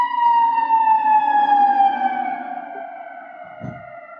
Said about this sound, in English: There's an ambulance in the background, one second.